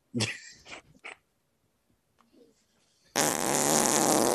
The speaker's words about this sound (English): Well, I played a really sweet fart drop.